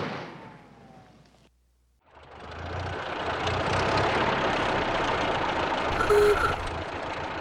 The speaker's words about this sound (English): Nobody will suspect us when they see this old jalopy lurching up the road.